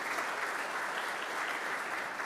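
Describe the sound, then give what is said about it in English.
A church audience claps steadily in sustained applause, a dense, even wash of hand claps that holds at a constant loudness throughout with no voices. “Give yourselves a round of applause, because that is very, very exciting.”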